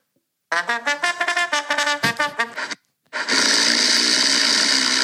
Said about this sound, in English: What's that? Is that someone making a fart noise? No, it's a snore.